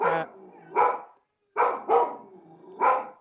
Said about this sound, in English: Ooh, there's my dog. Sorry.